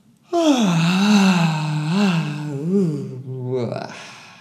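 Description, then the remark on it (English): A long, loud voiced exhale like an exaggerated yawn after a big breath in during a breathing exercise, a sustained moaning tone that wavers and dips in pitch for about three seconds before trailing off into breath. “We'll breathe in all the way to the top and then like a yawn.”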